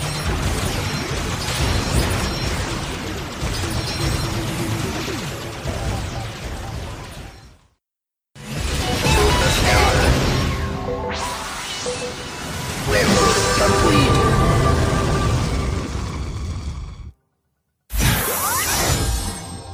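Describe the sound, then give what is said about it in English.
Dense video game battle effects, a combination of sound effects and gameplay from a major in-game event: zapping laser shots and booming explosions pile up with whooshes and crashes, loud and continuous, cut by two brief silences. “There's some lasers. There's some explosions.”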